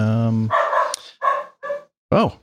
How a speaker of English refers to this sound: Can you hear the dog barking? I can hear the dog barking.